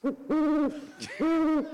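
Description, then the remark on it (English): Bird-call button tones from a phone keypad while dialing a long distance number: two sustained, hooting whistle-like notes, each preceded by a short chirp, loud with no talking. “Oh, birds. Good choice, sir.”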